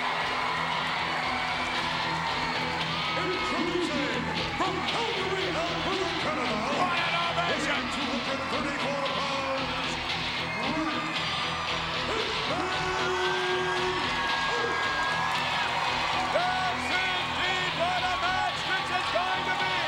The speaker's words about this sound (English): Crowd are going crazy for Bret Hart here in what could be a very good technical wrestling affair.